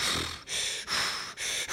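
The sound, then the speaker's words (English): Loud, hollow breaths pulled in and pushed out in quick succession, a person imitating breathing through a snorkel tube: four rough, airy strokes with brief pauses between them, no talking. “And I'm breathing in my snorkel.”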